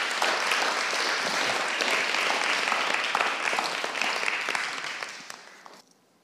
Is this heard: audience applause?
yes